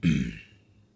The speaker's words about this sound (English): I keep clearing my throat. And it's just feeling really dry from speaking.